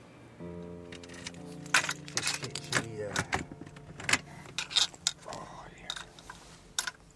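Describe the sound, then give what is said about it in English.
A mobile home door is opened: a drawn-out metallic creak, then a run of sharp latch clicks, knocks and rattles as it swings and settles. “opens the door of his mobile home.”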